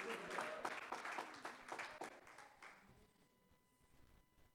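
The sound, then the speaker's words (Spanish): A church audience bursts into applause for the Lord in approval of the sermon's message, a dense patter of many hands clapping for about three seconds before it thins and fades away, leaving a faint steady tone and quiet murmur. “Dele un aplauso al Señor si a usted le gusta el mensaje.”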